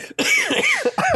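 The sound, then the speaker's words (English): A loud fit of harsh coughing, three or four raspy bursts in quick succession with a throaty, strained edge and no talking. “It sounds like I'm doing death sticks as I'm coughing.”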